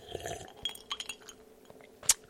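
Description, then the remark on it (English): A few light ceramic clinks and taps of a Wile E. Coyote mug as someone drinks what is left in it, with a sharper, brighter clink near the end, over a quiet background and faint handling noises, with no one speaking. “I mean, I got still some shit left in my Wile E. Coyote mug. Hold on.”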